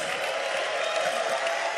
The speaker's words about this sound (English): Please, before I speak, can we give Daddy a clap and a shout of praise?